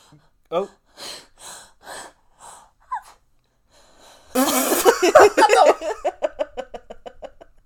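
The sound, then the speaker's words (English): A person takes a series of short, sharp gasping breaths as if about to sneeze, then a loud breathy burst trails off into rhythmic, fading exhalations, with no full sneeze arriving. “All that build up for no sneeze.”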